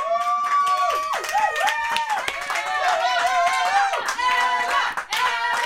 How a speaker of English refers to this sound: Can we just have a control room round of applause for that answer to that question, which is one of the best answers I've ever heard? Round of applause, please.